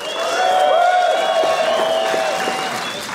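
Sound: audience cheering and applauding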